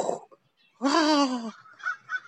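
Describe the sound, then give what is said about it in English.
A voice imitates a hawk's call with a single loud, drawn-out, wavering screech lasting about half a second, followed by faint, scattered softer sounds. “So the hawk go like this.”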